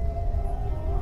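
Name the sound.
wolves howling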